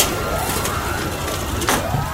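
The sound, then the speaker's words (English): An emergency vehicle siren wails, its tone sweeping up and down over a steady wash of traffic noise, with a brief burst of louder noise partway through. No one speaks. “Could we stop with the sirens for 10 minutes?”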